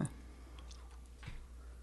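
Quiet mouth noises of gum being chewed, with a few soft wet clicks and slurps scattered unevenly over a low background hum.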